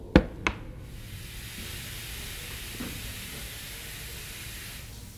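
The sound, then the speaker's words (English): Two sharp knocks, then a steady, even rush of water pouring from a tap into a bathtub, continuing unchanged with a soft hiss and no voices. “Let me stop my tub. Let me turn the water off before it overflows.”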